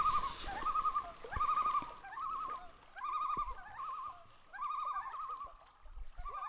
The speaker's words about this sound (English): There are three or four loons all calling out to each other as an eagle swoops and dives, looking for a morning meal.